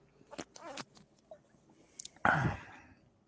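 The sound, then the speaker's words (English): A few soft mouth clicks and a light slurp, followed by a short, loud sip of a flavored malt beverage, then quiet. “Well, let me take a sip of this one and see what I think.”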